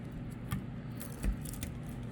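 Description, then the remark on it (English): Crisp snipping and crackling of dried tobacco being cut by hand into small coins, two sharper cuts among light rustles over a low steady background hum, with no talking. “Okay, you cut it like that.”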